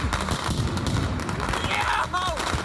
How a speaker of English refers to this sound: This was the wild, out-of-control scene in Brooklyn. They commandeered the streets while setting off Roman candles and other dangerous fireworks.